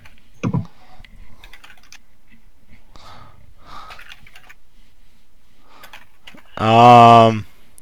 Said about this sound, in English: You might want to relax your fingers typing. You don't want them to bleed.